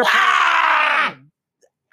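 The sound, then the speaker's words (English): A man lets out a loud, raw scream, held for about a second before it breaks and drops into a short, lower groan. It's unaccompanied, followed by silence. “what would be an episode of the Dr. Despair Show without an … scream”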